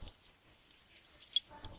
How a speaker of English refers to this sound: these fucking keys!